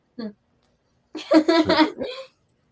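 A puppy lets out a short yip, then after a pause a longer, whiny, warbling string of vocal sounds, fairly loud.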